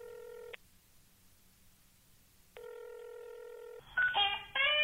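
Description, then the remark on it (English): A telephone call being dialed: a steady electronic phone tone sounds twice with a pause between, then a quick burst of beeping keypad tones follows. No one speaks. “And you're going to hear that one of those calls right now.”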